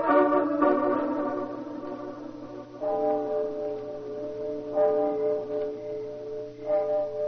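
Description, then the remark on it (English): A clock striking midnight: deep, resonant bell tones ring out one at a time, roughly every two seconds, each humming on with a long, slowly fading sustain. No voices are heard. “Nothing but the owls and the clock striking midnight.”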